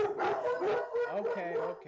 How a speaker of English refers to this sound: I'm sorry, there's some sort of dog barking outside. Oh, there we go.